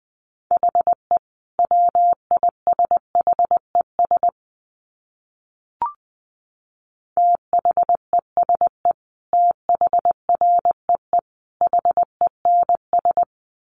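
Morse code at about 20 words per minute: a steady mid-pitched tone keyed into quick dots and dashes, two runs of characters split by a gap with a single soft click. No voices.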